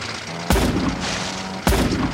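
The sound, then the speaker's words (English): Two loud, sharp gunshot blasts from a cannon, about a second apart, the shot hitting an engine dead center, striking hard over a steady rumbling background, each one booming and then fading into a noisy roar. “Got him right in the engine, dead center.”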